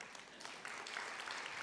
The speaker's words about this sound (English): The difference between Matt and I, big round of applause for Matt.